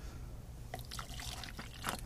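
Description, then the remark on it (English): A short, quiet pour of fizzy lime soda from a pull-tab can, with a few bubbly splashes and gurgles over about two seconds against low background hum. “This one's lime, if anybody wants lime. I'll try a splash.”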